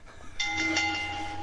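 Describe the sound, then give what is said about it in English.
A short homemade stinger sound effect for the Geek I.O. show kicks in after a brief lull: a loud, sustained train-like blast with steady whistle tones over a rumbling, hissing wash, no voices. “So, it's time for Dale's favorite stinger. The one I made.”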